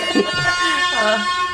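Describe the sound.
A steady, brassy air horn blares for over a second at moderate loudness, its tone holding flat while a wavering, voice-like sound slides up and down over it.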